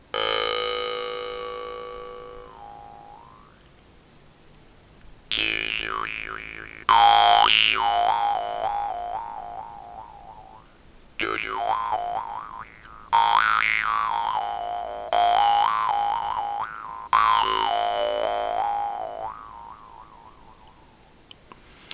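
A newly acquired jaw harp, tuned almost to A but slightly off, twangs through a series of about seven plucks, each ringing out with a long, buzzing sustain while its bright overtones wobble up and down in pitch.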